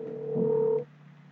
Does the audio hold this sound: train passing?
no